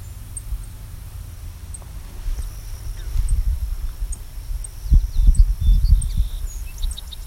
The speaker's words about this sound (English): No, that's actually a song sparrow. This is a different call than I thought.